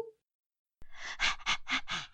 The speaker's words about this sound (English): Oh my god, he's breathing. I know, right? He sounded like he was gonna die. I know.